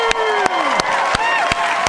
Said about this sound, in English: National Women's Day tomorrow. Woohoo! Everybody's clapping because they're so happy that it's...